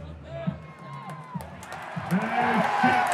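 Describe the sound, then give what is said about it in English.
A baseball stadium crowd cheers for Todd Frazier at the plate in a home run contest, with 9 home runs to beat, as he hits a long fly ball just over the fence; the noise builds from a steady murmur into a loud, sustained roar with scattered whoops, while a man's voice talks over it. “This crowd wants their boy to win.”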